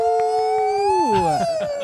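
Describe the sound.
A person howls like a wolf, holding a long steady tone that then slides downward in pitch, with rich overtones and a slight waver as the call trails off.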